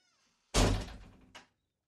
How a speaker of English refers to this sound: Shut the door, you guys.